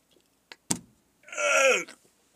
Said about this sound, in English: I've never heard you burp so much.